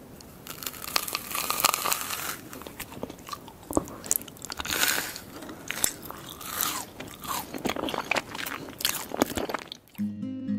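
Loud, crisp crunching and crackling as a woman in an ASMR video bites and chews a genie lamp made from rice bubbles covered in gold leaf, with irregular sharp snaps and crinkly textures repeating throughout, no talking.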